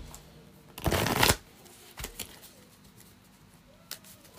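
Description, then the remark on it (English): A deck of cards is riffle-shuffled, a dense burst of rapid flapping lasting about half a second, followed by a few softer taps and clicks as the cards are squared up. “Give this a quick shuffle.”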